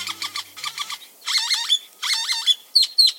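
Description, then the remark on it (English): Great-tailed grackle calls: bursts of harsh, rattling, squeaky whistles, a few rapid series in a row, ending in sharp rising squeals, loud with no talking. “Great-tailed grackles live up to their name.”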